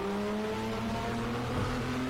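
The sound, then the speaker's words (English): A Ferrari F50 GT1 race car engine roars steadily at high revs at the Yas Marina Circuit in Abu Dhabi, its strong harmonic drone holding loud for a couple of seconds with no voices. “Yeah, this is a Ferrari F50 GT1.”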